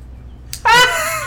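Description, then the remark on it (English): A single cat meow, fairly loud, opening with a short breathy burst before a drawn-out, slightly falling tone. No one speaks. “Sorry, Kitty.”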